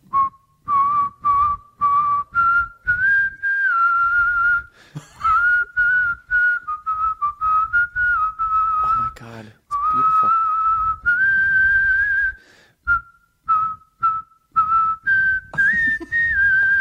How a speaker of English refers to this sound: I'm going to whistle, and then you're going to say stop and sing the lyrics.